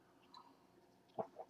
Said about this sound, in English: Arr, nothing like swallowing on the mic.